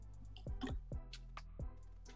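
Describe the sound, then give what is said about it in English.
Four or five quiet drops of water plink into a glass of whisky, each with a short rising pitch, irregularly spaced over two seconds with no talking. “Let's put a glass of water in this and see what's going on.”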